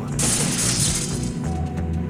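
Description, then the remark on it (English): A temporal device is struck to reset time: a sharp strike followed by a loud burst of shattering as it breaks, with bright crackling debris for about a second before it settles into a low rumbling hum. “It's this temporal doodad. I can reset time by hitting it like this.”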